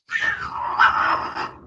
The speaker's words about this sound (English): Ooh, is that me? Yeah. Wow. Pay no attention to my cats.